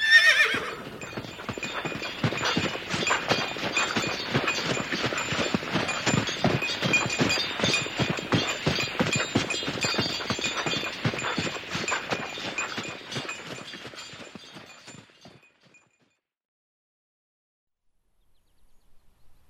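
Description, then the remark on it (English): A horse pulling a buckboard wagon loaded with supplies: its hooves clip-clop in a steady, brisk rhythm for about fifteen seconds, with a whinny mixed in, before the sound cuts off into silence. “And it's his horse.”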